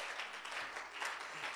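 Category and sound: crowd, audience clapping hands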